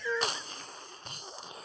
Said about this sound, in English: That's me slurping my coffee. Wait. Sounds like a good cup of Joe. Sounds like are you using a straw?